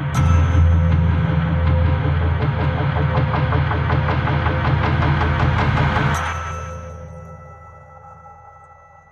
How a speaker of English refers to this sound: Do you guys hear helicopters? They're coming for us. Yeah. They're coming for us now. Nah, they're just going to pass over us.